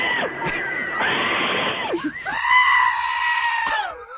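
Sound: goat bleating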